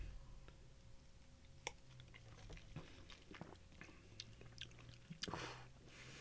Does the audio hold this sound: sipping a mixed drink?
yes